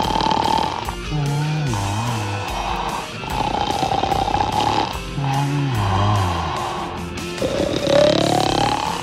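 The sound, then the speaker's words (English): A man in a voiceover booth makes loud, exaggerated snore-like rumbles and growls in several repeated bursts, with some higher gliding vocal tones, imitating snoring as a vocal warm-up. No words are spoken. “He's warming up his vocal cords. That's what he's doing.”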